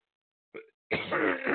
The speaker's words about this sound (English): Sorry. I had a little cough there again.